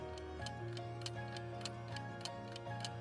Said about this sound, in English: The clock is ticking.